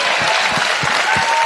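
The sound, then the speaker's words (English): A crowd bursts into sustained applause, a dense, steady wash of clapping with a few cheers, loud and unbroken throughout, following Kevin McCarthy's political speech line about repealing 87,000 IRS agents. “So, great applause line.”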